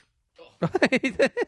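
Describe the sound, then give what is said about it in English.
A voice imitates a ringing bell with about six quick, evenly spaced vocal dings, fairly loud, after a short faint breathy lead-in. “I'm good at bells.”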